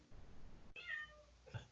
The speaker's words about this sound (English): Can y'all hear that cat? Can you?